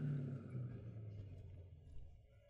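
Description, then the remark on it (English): A car engine idles with a steady, low rumble as the car waits stopped outside a house, holding an even hum throughout with no voices over it. “Shall I stop the car?”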